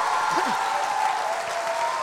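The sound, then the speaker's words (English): A large church audience claps hands in a steady, loud, dense roar of applause, with scattered voices shouting hallelujah over it throughout the short stretch. “Clap your hands and shout hallelujah as loud as you can shout.”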